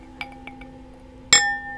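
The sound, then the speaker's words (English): A screw cap being twisted off a bottle of Josh Chardonnay wine: a few soft, separate clicks, then a sharp crack as the seal breaks, leaving a brief metallic ring. “Right now, I am drinking some Josh Chardonnay. Okay, I feel real bougie right now. Like, I love that. So, yeah. Twisting it off, some ASMR right now.”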